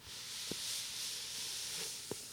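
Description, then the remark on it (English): A hand slides down the cover of a paperback copy of Pinocchio, making a soft, steady papery hiss for a couple of seconds, marked by two faint taps, one early and one near the end. “Now, for your listening pleasure, if we pick up Pinocchio, here's the hand sliding down the cover.”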